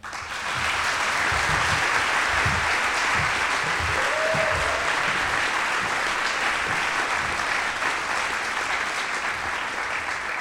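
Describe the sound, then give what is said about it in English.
Sustained applause from a large audience at EMU in Harrisonburg welcoming President Susan Schultz Huxman to the podium, a dense steady patter of many hands clapping at even loudness for about ten seconds with no talking. “Good morning, EMU, and can we get another round of applause for our three co-presidents”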